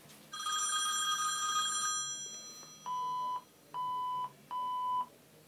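A telephone line busy signal on a call placed through an operator: after a brief buzzy ringing tone, three steady, evenly spaced beeps repeat at a moderate level with short gaps between them. No voices are heard.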